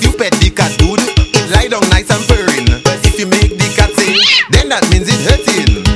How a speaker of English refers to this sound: Hello, kitty. Hello, puss puss, come and meet me. Hello, kitty. Hello, you're so nice and pretty.